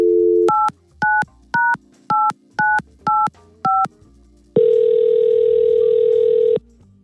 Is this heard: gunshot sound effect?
no